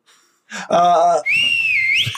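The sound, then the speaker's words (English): A short breathy burst and a brief voiced tone, then one sustained whistled note that holds steady for under a second before sliding upward at the end. “You hear a whistle, and then you look over, and there's a dragonbornman.”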